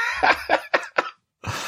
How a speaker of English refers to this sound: I can't cut the coughing part where you're talking. We got to leave it in. It's too good.